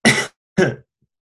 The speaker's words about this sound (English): And sorry for that sneeze.